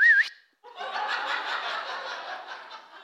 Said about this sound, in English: She knows my whistle. She could hear my whistle. And I promise you that if you try to imitate my whistle, she could tell the difference.